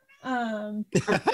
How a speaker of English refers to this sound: Yeah, I swear to God, it sounded like the cat said, no, I'm not.